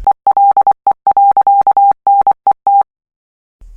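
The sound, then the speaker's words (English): A phone goes off with a single-pitched electronic beeping tone for an incoming call, pulsing in an irregular pattern of short and long bursts for about three seconds, loud, with no voices. “That's your phone, Ugo. You have a call.”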